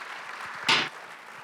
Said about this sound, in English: Wow, denle un aplauso a Dios por estos tres varones. Give God a clap offering for these three.